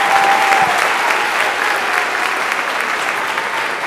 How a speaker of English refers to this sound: And last, but definitely not least, let's give all of the parents, guardians, grandparents, aunties, uncles, everybody a round of applause for being here today.